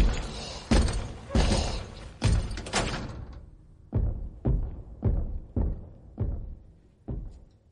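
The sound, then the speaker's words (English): A steady run of about ten heavy, muffled thuds, stomping footsteps of a pursuer in a video game heard through the walls of a save room. The first few land sharper and brighter, then the rest turn dull and deep. “Just that muffled God. Thump, thump, thump, thump.”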